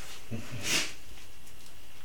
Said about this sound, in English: Bless you, dog. Anyway, thanks, dog.